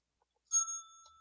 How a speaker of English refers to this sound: The bell has to be a sound, right? That's automatically in the bracket. Yeah. The bell could be in the bracket.